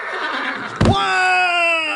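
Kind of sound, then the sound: animal, horse whinnying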